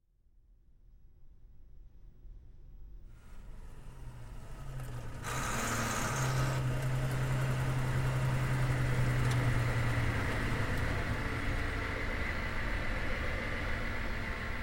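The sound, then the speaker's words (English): A Hummer's engine idles in a parking garage after the vehicle is pulled to the side down a ramp. Its deep, steady rumble swells up from near silence and holds loud, with a low droning hum in the middle stretch and no voices. “Kill the engine.”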